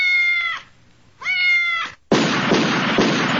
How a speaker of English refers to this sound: Apple says, every time you play that Sadie Lou meow, my dog flips out.